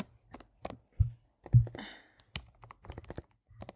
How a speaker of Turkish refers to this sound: klavyenin sesini yaklaştıracağım çünkü tık tık sesi benim çok hoşuma gidiyor. Size de ASMR yapayım.